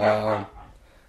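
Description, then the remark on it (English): The household dog barks outside, one loud, harmonic bark lasting under half a second, then the sound drops away to a faint low background. “Sorry, that's our dumbass dog out there.”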